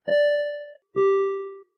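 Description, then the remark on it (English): A bell, rung in celebration of a runner finishing a marathon in under 4 hours, rings out two clear, sustained notes, a higher tone followed by a lower one, each fading over under a second, with no voices around them. “This bell is for you.”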